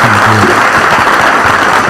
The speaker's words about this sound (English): We're going to give him a round of applause.